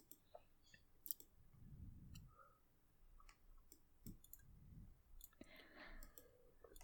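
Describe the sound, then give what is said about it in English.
Scattered light clicks, like dice tumbling, then two slow, deep heartbeat-like thumps a few seconds apart, muffled and fairly quiet, with no one talking; the effect a sanguine dice plays on rolling a natural 20. “Holy crap, the effect that the sanguine dice does when you get a natural 20 is like a heartbeat in your ear.”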